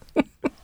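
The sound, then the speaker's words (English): Two quick, soft sneezes in a row, each a short breathy burst with a brief pause between them, and no talking around them. “Gesundheit.”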